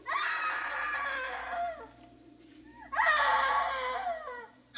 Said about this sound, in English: Oh, I know I heard her scream. I know it. Oh, darn. Darn, darn. You are there. You are there. Hey, screaming woman.